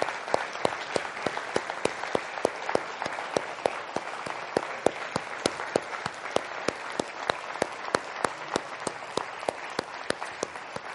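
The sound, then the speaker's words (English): Sustained applause from a large crowd honoring mothers, who have been asked to stand, many hands clapping together in a steady, dense wash with sharper individual claps popping out, lasting the whole stretch without any talking. “Let's applaud moms.”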